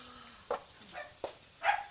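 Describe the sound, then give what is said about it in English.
A fat Jack Russell terrier barks in four quick, sharp yaps spaced unevenly over two seconds, fairly quiet, with no one talking. “I got a fat Jack Russell.”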